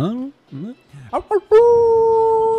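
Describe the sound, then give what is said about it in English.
A person imitates a wolf with a loud, sustained howl held at a steady pitch for about a second, preceded by a few short vocal yips and whines. “I howl with them.”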